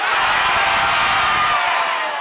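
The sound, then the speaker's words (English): A large live audience shouts all at once, many overlapping voices yelling their first names in a loud, dense roar that holds for about two seconds before trailing off. “So on the count of three, yell your first name as loud as you can.”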